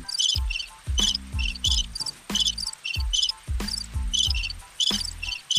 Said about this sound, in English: So we got the cricket sound effect.